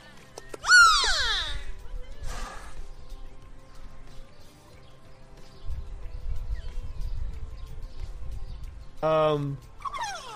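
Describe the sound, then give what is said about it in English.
Beluga whale vocalizations as a trainer plays with the whale: a loud, sweeping, high-pitched squeal, a brief chirp, then another harmonic whinny-like call near the end, over a low rumbling background. “So here's a trainer playing with a whale. A beluga whale.”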